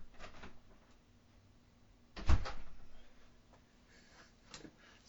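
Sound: door opening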